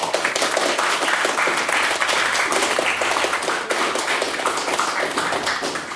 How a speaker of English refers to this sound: And now, to give the final maiden speech for this evening, once again, for the opposition, can we all please give a very, very warm round of applause for